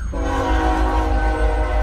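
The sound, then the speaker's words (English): A fast train's horn blares loudly and steadily over the deep rumble of the passing train in Odessa, Texas, sustained without a break; a slow train is also going by. “There's a slow train going by, but there's also a fast train.”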